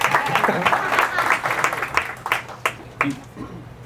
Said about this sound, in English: I see some, yeah, we'll take some applause, that's great.